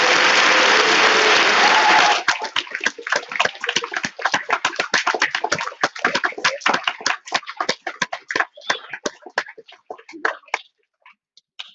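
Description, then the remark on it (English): An audience bursts into loud applause for a guest who has just shared his story, a dense wash of clapping that gradually thins into scattered individual claps before fading out. No one speaks. “Let's give our new friend a round of applause for sharing his story today.”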